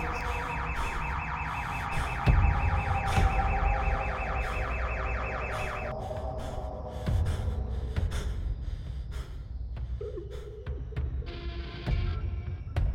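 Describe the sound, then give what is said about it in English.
A car alarm at a gas station blares in a rapid, repeating electronic warble for several seconds, then cuts out, leaving low rumbling ambience and scattered faint noises, with a breathy gasp near the end. “That alarm came from the gas station.”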